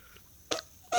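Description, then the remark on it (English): Two short, loud, raspy blasts from a novelty fart whistle, a wet-sounding fart noise, with a quiet gap between them and the second cut off at the end. No one talks. “I got the fart whistle. You tell me if it sounds like that.”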